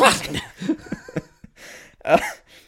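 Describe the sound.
A person vocally imitates a big sneeze: a few breathy, bursting syllables, fairly loud, building to a sharp final explosive burst.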